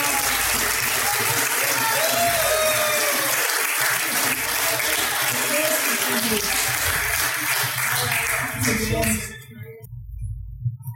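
A crowd at the Smokin' on the Water 2018 barbecue competition award ceremony claps loudly and steadily for about nine seconds as Perth Barbecue School Barbecue is announced reserve grand champion, with faint cheers and chatter mixed in, before the applause drops off abruptly into near silence.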